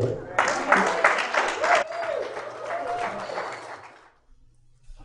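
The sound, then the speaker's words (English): An audience breaks into steady, dense applause for a woman who has just finished speaking, many hands clapping at once, loud at first and gradually thinning out before fading away after about four seconds. “See, look at that. They clap for you.”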